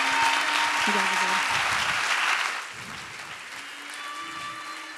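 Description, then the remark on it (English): An audience breaks into steady, dense applause for a panel, which holds strong for a couple of seconds, then thins and fades as people talk over the dwindling clapping. “Can you guys give them a round of applause real quick?”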